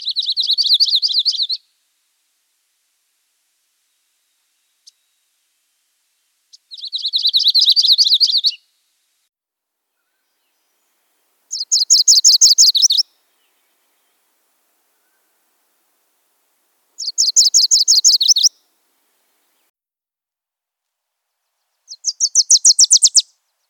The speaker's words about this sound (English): it's time. Time to learn some warbler sounds. I'll be honest, I'm a little scared to make this episode. I don't know what I'm doing. Warblers all sound the same, and they sound hard.